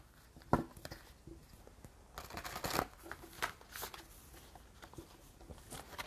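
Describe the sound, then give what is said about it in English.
Oracle cards from the Angels and Ancestors deck being shuffled: quick papery riffles and soft slaps in irregular bursts, with a sharper snap early on and a louder flurry midway, fairly quiet overall with no voices. “I'm actually shuffling quite well today.”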